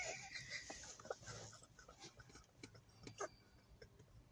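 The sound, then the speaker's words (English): Panting from a dog, quick breathy huffs repeating in an uneven rhythm, with a few small clicks and shuffles in the background and no one talking. “Take the goddamn dog.”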